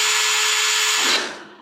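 A power drill whirs at a steady high pitch for just over a second, then spins down as the motor is released, fading away. Loud and close, with no voices.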